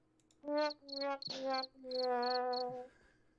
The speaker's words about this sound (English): No, get that cricket ready.